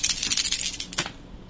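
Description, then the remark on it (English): Four attack dice clatter across a hard tabletop in a quick burst of bright clicking that rattles for about a second, then settles into quiet. No one speaks. “Four attack dice? Four attack dice.”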